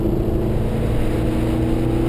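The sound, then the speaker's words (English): A Mercedes SLS AMG sports car engine roars loudly and steadily as the car accelerates on a lap of the Goodwood circuit, a deep continuous growl with strong low harmonics, with no voices. “Gareth Drives Goodwood in an SLS AMG”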